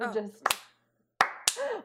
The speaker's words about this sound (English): We just want to slow clap you.